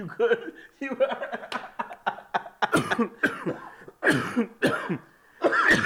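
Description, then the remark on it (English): A prolonged coughing fit brought on by pepper sauce: a rapid series of harsh, loud coughs bursting in uneven clusters with brief gasps between, continuing for several seconds. “I'm all coughing for him right now, folks.”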